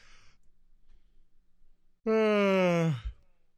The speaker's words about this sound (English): I have to yawn loud. That way you guys don't think I'm just randomly pausing, because it's... give me a break. It's 11:30.